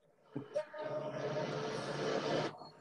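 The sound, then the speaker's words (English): A yellow train's rumble and whir swells in after a couple of sharp clunks, holding steady and fairly loud for about two seconds before cutting off abruptly. “Play us out with some train noises.”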